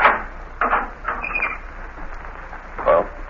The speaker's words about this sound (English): Unlock the door